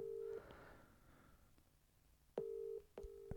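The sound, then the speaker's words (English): An outgoing phone call rings back over the line: steady electronic ring tones in bursts separated by a short quiet gap, clear and fairly loud, with no one speaking. It rings at least four times without being answered. “Whose phone goes to so this many rings?”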